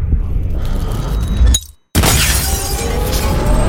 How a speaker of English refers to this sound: No. I raised my aim to the lamp. A gunshot. A flash.